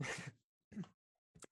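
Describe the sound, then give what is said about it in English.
Three harsh coughs in succession: a long loud first bark, a shorter second one after a pause, then a brief, thinner final hack, with no talking. “Bad time to have to cough, but I suppose it also fits well.”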